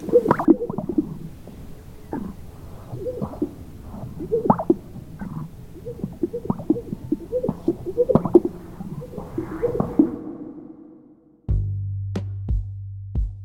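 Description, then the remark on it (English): Male sage grouse courtship display calls as the males puff out their chests and strut around to catch the females' eye: repeated wet, bubbly pops and gurgling swishes in a loose rhythm for about ten seconds, with no talking, before a steady low hum takes over. “And this is what their pickup line sounds like.”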